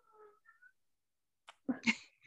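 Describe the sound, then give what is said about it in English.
A cat lets out a couple of loud meows in quick succession, preceded by a few faint, short chirping tones and a brief click. No one speaks. “No kitty. It's my chicken pot pie.”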